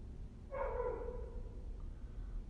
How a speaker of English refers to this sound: Perfect timing. This dog just started as soon as I did. I think he is honestly responding to my voice. Maybe he's telling me to pipe down. Maybe he's telling me to shut my trap.